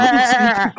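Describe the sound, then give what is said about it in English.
A person imitates a goat with a single loud, wavering bleat lasting most of a second, nasal and quavering, followed by a brief breathy trail-off. “I told you that I will not allow any goat behavior on this podcast.”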